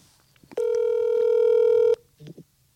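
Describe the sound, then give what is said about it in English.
A phone dialing out on speed dial: a single loud, steady electronic tone holds for about a second and a half, then cuts off, followed by a couple of faint, brief murmurs. “Well, let's call her. Oh my God. Hang on. I got her on speed dial here.”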